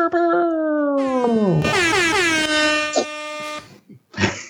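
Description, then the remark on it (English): Loud air horns blare together in a sustained, wavering chord for several seconds, with pitches bending and overlapping, ending in a few short blasts. “All right, honk the horns.”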